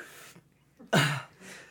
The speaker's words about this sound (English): Was that through your nose, or did you just cough? Because I said Putin. Did you miss? Somehow I managed to keep it from coming out my nose, but it came out my mouth all over my own face.